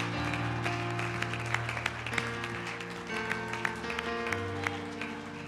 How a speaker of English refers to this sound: Clap your hands to him and give him glory one more time.